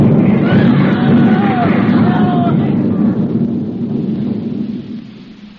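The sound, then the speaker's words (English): A heavy 305 artillery shell, thought to be a Skoda, bursts close by, its deep, loud roar rolling on for several seconds before slowly fading, with faint cries of voices mixed into the rumble. “It was 305. Sounded like a scoda to me.”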